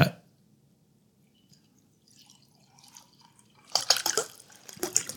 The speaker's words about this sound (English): absolutely disgusted by the sound of liquid pouring